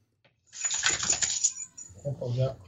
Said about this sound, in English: there's an unmistakable sound of a collar rattling around as they shake their head